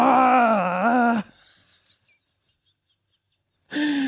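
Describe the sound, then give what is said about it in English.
A man's voice imitates Arnold Schwarzenegger screaming: a loud, strained, wavering yell held for about a second, then silence, then a second loud yell starting at the very end. “I've seen so many Arnold screaming impressions.”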